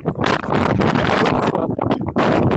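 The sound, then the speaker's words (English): Loud, continuous wind buffeting a microphone outdoors, a rough roaring rumble that surges and dips in gusts across the whole clip, overwhelming with no other sounds clearly audible. “It's so windy out here. Is somebody in a wind tunnel? Because that's all I hear.”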